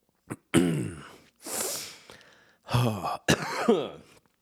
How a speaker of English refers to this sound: I do this every time before I record a video. Lots of clearing my throat and sneezing and coughing and hacking and blowing my nose.